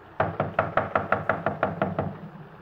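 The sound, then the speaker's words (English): A rapid series of about eleven firm knocks by police officers on a wooden front door, evenly spaced, with no voices. “Not answering. Come on, open up in there. We know you're in there. Come on. Open the door.”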